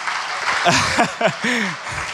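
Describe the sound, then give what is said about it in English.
A church audience claps steadily for a pastor in a dense, continuous patter, with a voice calling out briefly over the applause partway through. “Give him a clap, everybody.”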